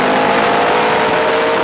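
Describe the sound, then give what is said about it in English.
A Ford Pinto car engine runs loud, its steady droning hum holding a strong pitch for a couple of seconds with no voices. “Pinto, a little carefree car to put a little kick in your life.”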